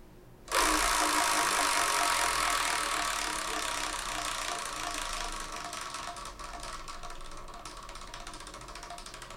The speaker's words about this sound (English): What we're going to do is we're going to spin the Wheel of Manga.